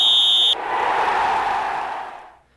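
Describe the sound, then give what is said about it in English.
A single shrill whistle blast opening the sports show Sport On on K103 Gothenburg Student Radio, high-pitched and steady for about half a second, then a broad rushing roar that swells and fades away over the next two seconds. “Let's play ball! Whistle!”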